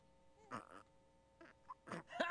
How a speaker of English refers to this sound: Ha! Burping like a boss? Way to go, fake dad.